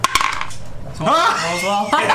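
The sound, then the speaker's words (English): A quick run of hard, rattling clicks as dice tumble and clatter across a table for a contested strength check in a tabletop role-playing game, fairly loud, followed by a voice making drawn-out vocal sounds. “Beat him with his own dice.”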